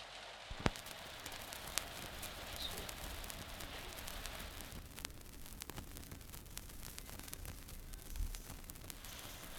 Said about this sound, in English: The rain started too. You can hear the rain on the roof.